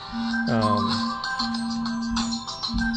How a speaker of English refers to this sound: Sorry about that. I forgot to shut my phone off.